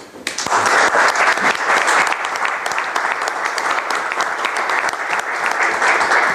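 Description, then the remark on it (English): A crowd of people claps steadily for several seconds, a dense, loud wash of applause that starts abruptly and keeps going without letting up, honoring the organizers of a New Austin School session. “So let's give Ludwig and Willie a round of applause for organizing this.”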